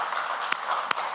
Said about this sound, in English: I got one more little clap back there.